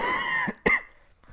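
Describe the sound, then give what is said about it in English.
A harsh cough from a person who has had a cough for about a month rings out, then after a brief pause a second sharp cough burst follows, with faint breathy noise trailing off at the end. “Sorry, my cough is still there.”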